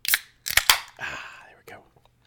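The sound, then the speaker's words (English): A beer can cracks open: a sharp snap and a quick cluster of metallic clicks, then a hissing fizz that fades over about half a second, followed by a faint tap. “All right, three, yes, all this yapping. Two, one. Let's pop.”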